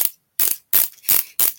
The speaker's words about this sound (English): Sorry, I'm going to retighten the cast. I don't think he's doing a tire. Like, yeah, or you're tightening something with a screw. This is how you have to do it. Is like you press down on this, and then you just twist it. It tightens and pulls in.